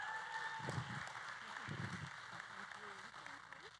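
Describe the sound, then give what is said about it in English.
An audience claps for two women coming up to tell a story, a steady, dense patter of hand claps that holds for several seconds, with a few voices murmuring underneath. “Y'all give them a hand clap.”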